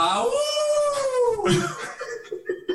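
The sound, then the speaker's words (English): A person imitates a wolf howl: one long, drawn-out wavering note that slides downward over about a second and a half, fairly loud, before trailing off into murmuring. “I'll be the lone wolf this time around.”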